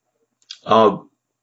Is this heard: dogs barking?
no